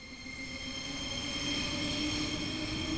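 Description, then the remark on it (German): A Ringbahn city ring railway train squeals steadily, its high metallic tones holding as stacked whines over a low rumbling roar that swells slightly throughout, with no voices. “Hinter mir höre ich das typische Quietschen der Ringbahn.”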